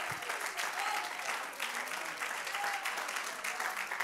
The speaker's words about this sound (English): Come on, somebody, clap your hands unto the Lord. Magnify the name of Jesus.